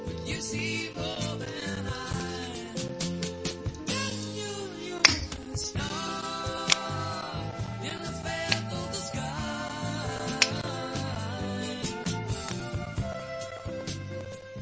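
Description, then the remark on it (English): Sharp finger snaps click along in the background of a song, a handful of crisp, bright pops landing roughly on the beat beneath the steady music. “and I liked whoever's clicking on in the background”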